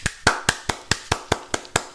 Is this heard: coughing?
no